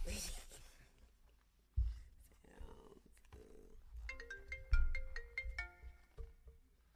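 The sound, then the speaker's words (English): A mobile phone ringtone starts partway through, playing a bright electronic melody of stepping tones. Rustling and dull handling thumps come before it and continue underneath. “Oh, you want me to call it? Yeah. It's a ring loud?”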